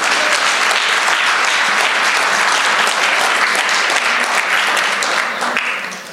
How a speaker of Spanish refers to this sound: Si tú lo crees, dale un aplauso fuerte, Señor.